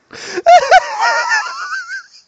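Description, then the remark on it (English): A person makes a pig-like snort, two quick loud nasal bursts that run into a long, wheezy, high-pitched squeal, falling silent after about two seconds. “No, dude, if I grabbed a pig, I'd grab onto that pig and hold onto it for quite a while because, oh, and he snorted.”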